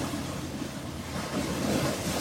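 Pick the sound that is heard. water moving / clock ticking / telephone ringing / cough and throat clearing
water moving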